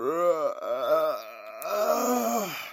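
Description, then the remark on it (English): A male narrator gives a long, loud, drawn-out yawn with groaning pitch swoops, imitating someone waking, sitting up and stretching. It is clear, with no other sounds. “Hagrid yawned loudly, sat up, and stretched.”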